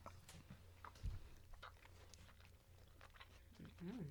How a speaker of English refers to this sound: I'm gonna chew in the microphone for all of y'all at home. For the ASMR.